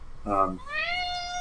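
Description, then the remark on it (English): A cat meows twice: a short, low harmonic mew followed by a longer, higher, rising-then-steady meow, heard alone without talking over it. “And Trumpet agrees. Come here, kitty.”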